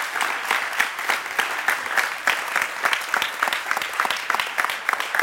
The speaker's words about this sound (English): Can we applaud the Lord for what he's done and said? Amen.